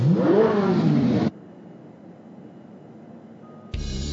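Race car engines start and rev loudly at the Indy NXT by Firestone Detroit Grand Prix, race one, in Detroit, the pitch climbing and falling, then drop away to a low rumbling hum before another loud burst of engine noise kicks in.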